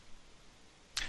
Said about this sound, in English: The whip sound.